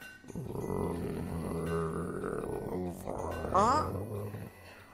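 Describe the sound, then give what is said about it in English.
A low, rumbling animal growl, close and fairly loud, drawn out for several seconds with a harsher snarl near the end; it sounds like a human voice imitating the growl. “You hear what sounds like a growling noise not far from you.”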